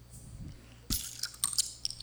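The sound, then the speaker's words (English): A glass Topo Chico mineral water bottle is pried open with a Texas bottle opener, giving a sharp metallic pop, followed by a crackly hiss of fizzing carbonation and a few light clinks over low background hum. “So with my Texas bottle opener, I'm gonna go ahead and open this, because usually in Texas, thank you, everything's bigger.”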